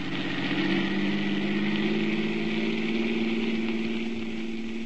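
A car engine runs steadily throughout, a continuous low droning hum with a faint whine above it, holding an even loudness with no voices present.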